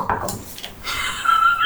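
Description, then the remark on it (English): Dice are rolled to make an attack, rattling and clattering across a hard surface: a few quick clicks, then a brief spinning rattle as they settle. Moderately loud, with no voices. “We will do anything to roll a dice.”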